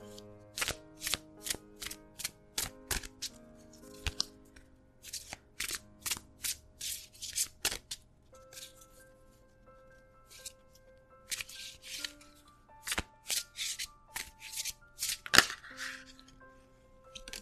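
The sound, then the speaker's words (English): Tarot cards from the Somnia Tarot deck, a deck by photographer Nicholas Bruno, being shuffled: a run of crisp riffling bursts in quick clusters, a short lull midway, then more rapid shuffling; no one speaks. “And this month I am pulling from my Somnia Tarot.”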